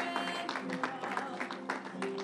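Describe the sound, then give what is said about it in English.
A church audience claps together in praise in a steady, dense patter, with voices and a sustained tone blending underneath throughout the short stretch. “You got to praise God. You got to clap this up.”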